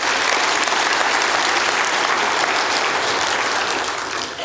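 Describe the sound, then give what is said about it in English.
A church crowd applauds because someone from Salem Free Clinic decided to give their life to Christ, a dense wash of many hands clapping at once, holding loud and even for several seconds before easing slightly at the end. No one speaks over it. “That someone from Salem Free Clinic decided to give their life to Christ, so let's clap for that as well.”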